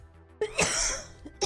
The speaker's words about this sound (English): I'm going to cough on you because I don't know which way to cough anymore.